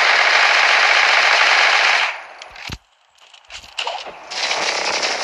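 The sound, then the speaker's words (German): Video game gunfire roars in a dense, continuous automatic burst for about two seconds, cuts off briefly with a sharp single crack, then scattered shots lead into another sustained burst of rapid fire. “Warum treffe ich gar nicht?”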